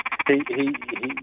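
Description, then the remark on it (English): A quick run of nasal, honking goose or duck calls, several short croaky notes in rapid succession, somewhat muffled as if coming from the background. “What was that? Were you goose hunting all of a sudden?”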